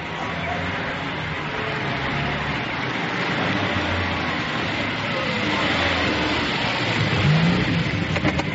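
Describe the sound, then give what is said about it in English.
A car drives steadily along, its engine a continuous low rumble mixed with road noise, holding a fairly even loudness and swelling slightly toward the end. “We've arranged for a car to take you there.”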